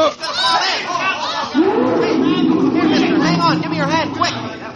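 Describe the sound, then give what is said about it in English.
Crowd chatter at a crowded zoo by the lion pits, with kids and grown-ups milling around at the iron railing along the edge of the moat: many overlapping voices talking at once in a dense, steady babble, fairly loud throughout, with occasional raised voices rising above the hubbub. “I drifted close with the rest of the crowd, leaned over the iron railing that ran along the edge of the moat, and then...”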